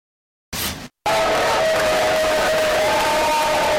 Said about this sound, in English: From Barkley to Biden, everybody celebrating the U.S. 1-0 victory over Iran on Wednesday. Absolute scenes back at the U.S. hotel upon the team's victorious return.